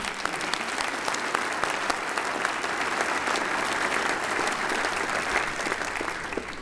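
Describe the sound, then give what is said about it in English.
A round of applause from a church audience after the Lord's Prayer in a worship service, steady and sustained throughout, with dense overlapping claps holding an even loudness and no talking. “Give these folks a round of applause, would you?”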